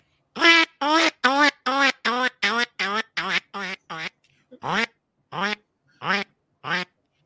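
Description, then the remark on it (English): A person imitates the call of mallard and teal ducks by voice, without a duck call: a rapid descending series of about ten nasal quacks, then a short pause and four more evenly spaced quacks, loud. “So I learned myself how to call ducks without a duck call”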